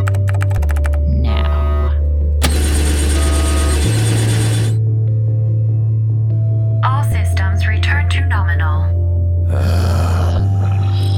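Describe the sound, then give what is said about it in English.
A deep, heavy drone from an overheating spaceship's number 3 engine hums throughout and steps between pitches, broken by loud bursts of hissing steam and some warbling electronic tones, with no one speaking. “Looks like our number 3 engine's overheating.”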